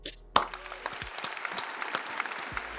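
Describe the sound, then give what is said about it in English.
A burst of applause to close a show starts abruptly after a brief pause, dense overlapping claps from a group forming a steady, moderately loud wash of clapping that continues throughout. “Let's clap it out.”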